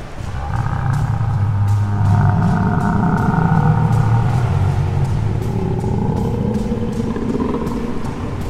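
A deafening monster roar from a tentacled creature, heard as its tentacles rip into the ground, rumbles on for several seconds without a break, deep and growling with wavering harsh overtones, loud throughout and faintly crackling, with no voices.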